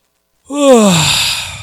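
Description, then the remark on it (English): A single exaggerated yawn, fairly loud, starting with a voiced, falling moan and trailing off into a long breathy exhale, with no talking around it. “Now I'm just going to do nothing. Yawn.”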